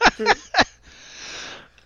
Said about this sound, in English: I'm gonna sneeze into my microphone and fucking hit me in the head and knock myself out. Show's over.